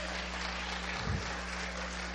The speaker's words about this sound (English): Somebody clap your hands and give Him a praise.